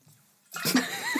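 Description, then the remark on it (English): After a brief near-silence, water suddenly gushes and splashes out of a water bottle, a steady hiss with bubbly gurgles that keeps pouring without a break. “I'm so sorry, guys. My water bottle.”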